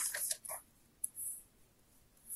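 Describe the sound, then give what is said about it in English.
Pages of a notebook rustle and flip, a quick cluster of papery swishes at first, then a single sharp page turn and a soft lingering hiss of paper. “Let me get my book.”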